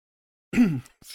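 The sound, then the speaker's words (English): A single choked, half-voiced cough that drops in pitch and trails off, then a short breathy huff after a brief pause. “Halfway through a cough.”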